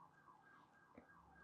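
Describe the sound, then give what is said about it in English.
A wailing emergency siren rises and falls steadily, heard faintly with no talking over it. “All the sirens.”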